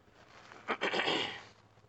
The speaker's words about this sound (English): Zipper seal.